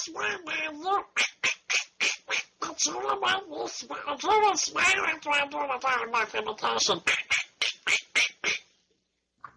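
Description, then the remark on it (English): A person does a garbled, raspy Donald Duck impersonation, a fast run of squawking quacky syllables for about nine seconds, loud, then trails off into silence. “Why don't you do a Donald Duck impersonation?”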